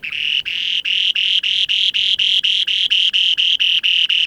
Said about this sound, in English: That's the song of one of the rarest birds on Earth, the spoon-billed sandpiper. I recorded it in the far northeast of Russia, where as few as 100 remaining pairs of this mysterious little sandpiper with a remarkable spoon-shaped beak go to breed